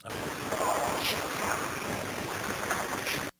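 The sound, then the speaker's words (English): Steady, loud rushing of wind with a broad roar like waves or surf, continuous for the whole stretch before cutting off abruptly, with no clear voices. “A windstorm, maybe. Sounds like it.”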